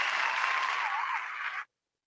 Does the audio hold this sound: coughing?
no